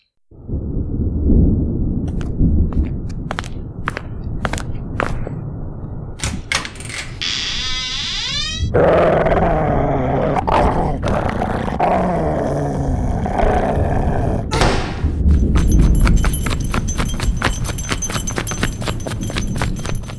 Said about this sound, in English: Well, it might have been a summer evening. There was some thunder. Somebody walked up and opened a door very slowly, but a dog growled and barked